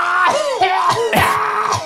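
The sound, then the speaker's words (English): A voice imitates a harsh, screeching cough: loud, strained bursts of rasping, high-pitched hacking that run together for about two seconds. “Just a screaming, awful cough.”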